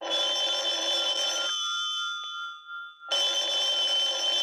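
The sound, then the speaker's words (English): An old-fashioned telephone bell rings loudly in two bursts of rapid metallic trilling, separated by a brief pause where the tone fades, with no voices present. “But we couldn't do the evolution of phone support without starting with the invention of the telephone.”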